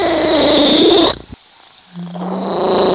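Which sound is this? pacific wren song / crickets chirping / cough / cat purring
cat purring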